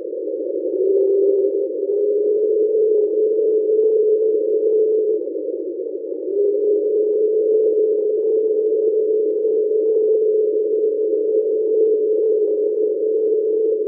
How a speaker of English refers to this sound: As was the case with the last few samples, train was first heard in the late 90s in the Pacific Ocean, and is believed to be noise from a slow-moving iceberg.